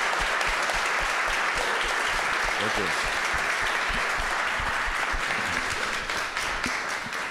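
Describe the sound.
A sustained round of applause, many hands clapping in a dense, steady patter that stays loud throughout and eases slightly toward the end, with a voice briefly speaking over it.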